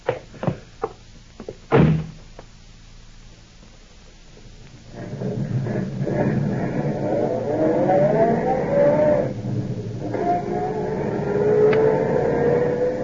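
A few sharp door clunks and thuds, then a car engine starts up and drives off, its steady rumble rising in pitch as it accelerates.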